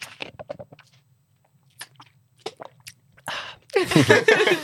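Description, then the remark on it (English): A Lay's Classic potato chip is bitten and chewed: scattered sharp, crisp crunches, a brief pause, then a loud, dense burst of crunching chews at the end over a low background hum. “So that's just a regular old Lay's classic potato chip.”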